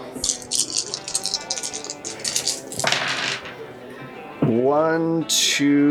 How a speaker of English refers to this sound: So, regulation is 4. I get a lot of dice for this.